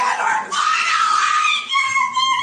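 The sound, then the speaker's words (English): A woman yells in a loud, high-pitched, sustained scream that wavers in pitch, with a brief dip about halfway through before the yelling resumes. “Get her phone away, she's yelling.”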